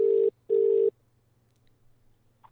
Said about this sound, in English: I'm so sorry whoever's going to get this call. The phone is ringing.